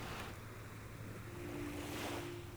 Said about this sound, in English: You push the boat out from the beach into the shallow water